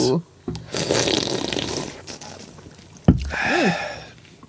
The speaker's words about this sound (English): Oh, that's very tasty. Yeah. But I should not have slurped it. I always try to, like, make a slurping noise for always dangerous. For the listeners. Yeah. Mm-hmm. That one I should not have slurped.